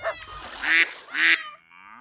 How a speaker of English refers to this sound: So off she went and bought some ducks, and she put them in the pond beside her garden, and those ducks splished and sploshed and made a loud quack, quack, quack, quack, quack.